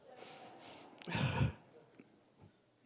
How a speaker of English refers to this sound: Thank you. I'm used to just breathing in the snot, you know.